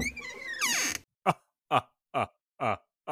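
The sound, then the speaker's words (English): A creaky, groaning door to the left of a bed swings open with a rushing burst, followed by five short, evenly spaced, tonal bursts that stand out loudly against silence. “Before she can say anything else, a door to the left of the bed opens and Vladimir von Von Von walks out.”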